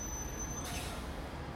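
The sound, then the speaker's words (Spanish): Low, steady rumble of a busy bus terminal at Christmas time, full of people trying to catch their buses, with a sharp hiss of bus air brakes cutting in partway through and fading into the background noise. No one speaks. “Así que recuerdo que tomamos todas nuestras maletas, las bolsas de regalos y el jamón, y fuimos a la estación de autobuses.”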